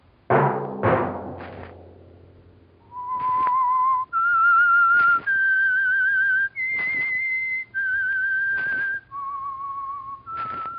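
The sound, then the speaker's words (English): A few sharp struck chords ring out, then a clear whistled melody follows alone, sustained notes stepping up and down in a slow, haunting tune with soft orchestral backing. “Let that whistle be your signal for the Signal Oil program, The Whistler, each Wednesday at this same time.”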